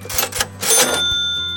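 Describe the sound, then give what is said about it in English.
A cash register rings up a sale: quick mechanical clacks, then a bright bell-like ding that lingers over a rolling, rattling drawer. No one speaks. “And Joseph's idea is for a cash machine that turns regular paper into $5 bills.”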